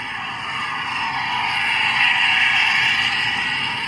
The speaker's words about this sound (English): And this is not just a one-time occurrence. This is in a very busy area with respect to recreational vessel traffic. So now you can hear the vessel approaching.